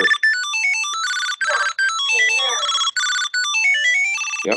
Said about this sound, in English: So the cool thing about the tile is it's 50% louder than the older generation of tiles. Yes. And here, I'll play it. So I'm going to click the find button on my luggage tile.